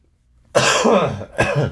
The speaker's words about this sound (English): Sorry, I didn't think I'd be coughing this much.